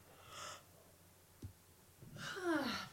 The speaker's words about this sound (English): Yawn into the mic. Oh, please. I was trying to lean away. No, do it.